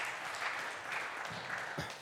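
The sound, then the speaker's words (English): An audience at Cornerstone church claps steadily for the pastor's 25 years there, a dense, even wash of many hands at a moderate level, with a few low murmurs of voices rising through it toward the end. “Wasn't trying to get the clapping.”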